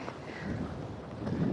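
Wind buffets the microphone on a windy day in a steady, low rumbling roar with gusty swells, loud, and no voices are heard over it.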